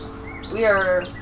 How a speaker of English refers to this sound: We switched up our setup today. And if you can tell by the bird chirping that... We're not outside per se. We're in a garage. Yeah, we're in the garage, but...